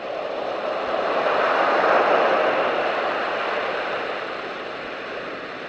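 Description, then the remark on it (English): A soothing ocean-wave sleep sound plays steadily to help a baby fall back asleep, a soft continuous hiss that swells gently toward the middle and then eases back, with no voices. “Turn on soothing baby sounds.”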